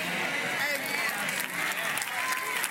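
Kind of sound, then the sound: crowd, audience clapping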